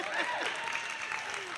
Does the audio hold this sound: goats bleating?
no